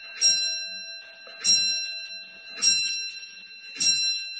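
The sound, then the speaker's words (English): A clock chimes four times in an even, steady rhythm, each bright metallic strike ringing on with a sustained tone that overlaps the next. The chimes are clear, with no talking. “Here we go. Here comes the clock.”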